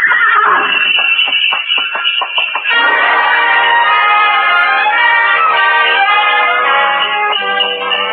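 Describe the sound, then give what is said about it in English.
A horse-drawn sleigh gliding out of a station over snow, runners squeaking: a quick run of soft, rhythmic hoof beats for a few seconds, then a loud, sustained bright jangling of bells and a horse's whinny filling the rest, with no talking. “Glided out of the station, runners squeaking on snow, the soft pad of hooves, and the jangle of Mary Bell.”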